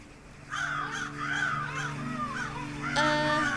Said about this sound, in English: Those crows are coming in pretty fast.